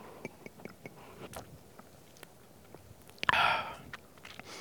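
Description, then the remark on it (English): Someone takes a sip of water: a run of small wet mouth clicks and swallows, followed by a short, louder breathy exhale, with no talking. “I'll get a bit of water. Tongue's getting a little bit sticky.”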